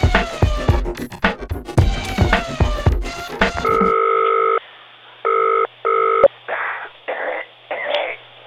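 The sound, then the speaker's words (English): A telephone effect: a steady dial tone, then short dialling beeps and a series of buzzing ring pulses, clear and following a dense, busy opening stretch, as a call is placed to the man who designed the Alpha Sud car. “Get the man who designed the Alpha Sud on the phone and we'll find out.”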